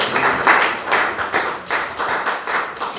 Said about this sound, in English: Let's give a clap hand for Jesus.